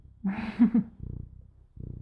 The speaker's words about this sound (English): purr into the microphone. Yeah. Ambiance.